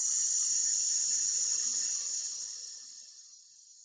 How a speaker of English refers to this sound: So again, in for 3. Out for 6 and hiss out this time. We're going to go one more time. Really think about relaxing your shoulders on that hiss. So breathe in. Hiss out.